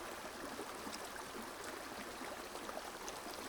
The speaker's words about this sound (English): You might even feel like you yourself are seated at the apex of this sound, so that this river is surrounding you and moving through you.